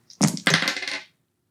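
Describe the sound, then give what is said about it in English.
Four madness dice clatter onto a hard surface in two quick bursts, a bright rattle that tumbles and fades within about a second, with no voices. “We're going to go with lucky number four madness dice.”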